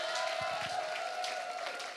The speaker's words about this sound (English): Clap for Jesus.